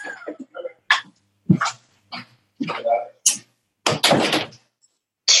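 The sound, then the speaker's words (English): A door is pushed open by a female dog with a few short thumps and rustles, and she comes in, her movement and brief yips or huffs scattered through several seconds of intermittent noise. “The dog had opened the door. She came in.”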